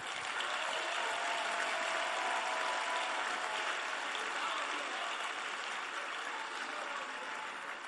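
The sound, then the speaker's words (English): Sustained applause from an audience fills the space, a dense, steady wash of many hands clapping at once for several seconds without any voices breaking through. “Clap for.”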